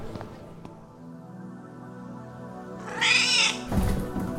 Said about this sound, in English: No! Dumb cat!